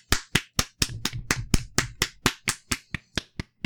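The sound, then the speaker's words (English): A steady series of about fifteen sharp hand claps, evenly spaced, with no voices over them and brief low rumble between a few claps. “So they did clap it. Clap faster”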